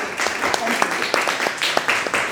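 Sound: audience applause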